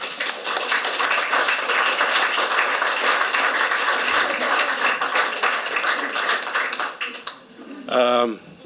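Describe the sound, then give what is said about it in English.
A steady round of applause from a crowd for the next speaker, a CEO, dense, loud clapping that holds for about seven seconds before fading, then a voice begins speaking. “Round of applause for CEO.”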